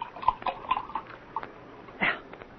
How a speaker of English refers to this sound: Oh, wait. Excuse me. I have to refill this little glass. Pour you one? No, thank you. Ooh, more for me.